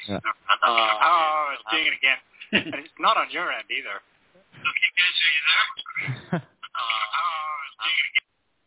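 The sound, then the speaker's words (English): A narrowband, tinny voice comes through a phone line, the speech smeared by an echo that repeats it after a noticeable delay, with brief gaps of near silence between bursts. “I've never had that kind of weirdness echo now. Before. Big delay.”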